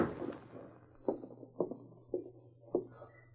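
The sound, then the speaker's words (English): Four light taps on the wooden door of a small cabin on the outskirts of town, evenly spaced and fairly soft, with a low steady hum in the background and no voices. “She stopped suddenly as she heard a light tap on the door.”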